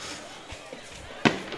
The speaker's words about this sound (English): Fireworks over here for Dadeville faithful.